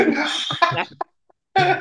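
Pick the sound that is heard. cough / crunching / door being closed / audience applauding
cough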